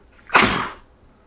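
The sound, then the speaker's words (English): A single sharp, loud sneeze bursts out abruptly and trails off within half a second, with no talking around it. “Bless you.”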